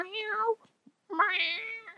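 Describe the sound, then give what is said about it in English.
Two drawn-out cat meows separated by a short pause, the second higher and more plaintive, fairly loud with no talking, from a cat that had crawled into the engine of a Chevy S10 pickup truck to get warm, heard while the truck was being driven. “Is the Chevy truck the one that had that cat in the engine hood?”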